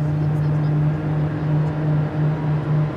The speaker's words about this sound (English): Then you'll hear the engine slowly start to wind up, that turbine sound.